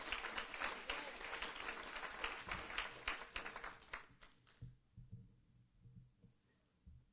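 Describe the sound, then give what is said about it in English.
A church audience at a morning service claps in praise to God for the sermon subject, a dense, loud burst of applause for about four seconds, then it thins and fades, leaving a low murmur and a few scattered sounds. “Can we clap a little bit louder, the cursed way?”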